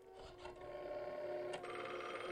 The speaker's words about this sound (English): Oh, the old-style phone. Rotary dial.